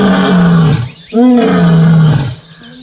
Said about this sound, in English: It's not a walrus, no, and it's not an elephant. It's actually a lion.